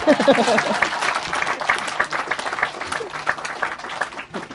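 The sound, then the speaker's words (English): An audience applauds with a dense, steady patter of many hands clapping, loud and sustained throughout, with a few voices faintly mixed in beneath the applause. “Clap hand again.”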